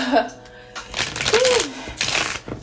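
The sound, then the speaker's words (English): A deck of cards being riffle-shuffled, two quick crackling bursts of flapping cards, with brief bits of a voice murmuring alongside. “I'm supposed to be shuffling these cards.”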